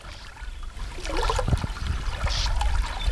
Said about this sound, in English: Now, this actually here is some nice cool water that I heard, and I'm sharing this with you. This is on the Missouri River.